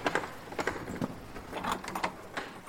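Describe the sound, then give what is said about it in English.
A big, heavy iron door handle on a door at Featherstone Castle is turned, giving a series of metallic clicks, rattles and latch clunks as the door begins to open, with no voices. “Okay, the door is waiting for us, so let's have a venture in with this big, impressive iron handle which I'm about to turn.”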